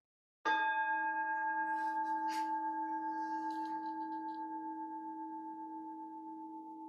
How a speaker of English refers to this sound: And when you can no longer hear it, and we all have varieties of hearing levels, right? Keep the sound alive in your mind. Let the sound take you to a place of centering. So let's go ahead and let's try this here. Chase the bell.